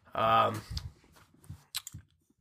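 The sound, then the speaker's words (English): Someone takes a sip of Harpoon Oktoberfest beer: a short voiced hum, then a few soft, wet mouth clicks and a quiet swallow. “Take a sip.”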